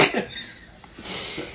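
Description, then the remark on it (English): A person coughs twice, a harsh burst at the start and a longer, raspier one about a second later, with no talking around them. “We were talking about a cough.”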